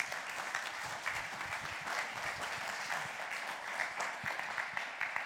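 A crowd claps steadily in sustained applause, a dense, even patter of many hands that holds at a fairly loud level for several seconds without any voices rising above it.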